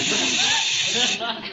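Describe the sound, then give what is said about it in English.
A loud, steady hiss crackles down a telephone line, continuous and band-limited like a bad connection, with faint traces of a voice buried underneath before the noise eases slightly at the end. “are you hissing me?”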